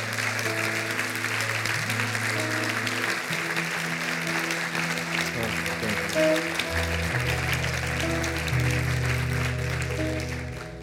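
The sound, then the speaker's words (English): An audience claps loudly and steadily for God for about ten seconds, a dense wash of hands, with a low sustained organ or keyboard tone underneath. “If you're going to clap, clap louder, because it's for God.”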